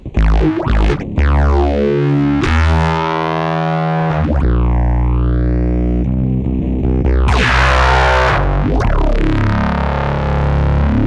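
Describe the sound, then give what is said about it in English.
A distorted bass guitar plays loud, sustained notes while an envelope filter sweeps open with each pluck, giving a gritty, vowel-like wah to the tone. No voices are heard. “Okay, I'm gonna put it on envelope, the control of the filter.”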